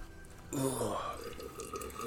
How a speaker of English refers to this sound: Hang on. I got to take a sip as well.